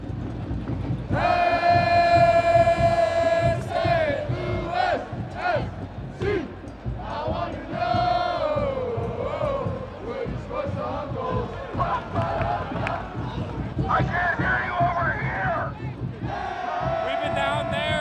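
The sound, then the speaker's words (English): A loud, dense crowd of supporters at a stadium yells and chants without pause, with long, drawn-out tonal shouts rising above the steady roar for the whole stretch. “You get a beer in you, you get to start yelling.”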